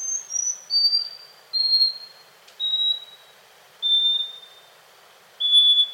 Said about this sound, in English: The scaly-breasted wren lives in Central and South America and has a lengthy song of whistled notes separated by pauses.